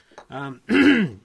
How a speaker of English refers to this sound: why are you coughing? You haven't been saying anything for ages. I know. I don't know why it's getting to my throat.